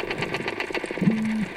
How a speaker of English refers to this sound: Under the tapping sound coming from the perch, you can faintly hear what sounds like that creaking door or something like a fishing rod being reeled in.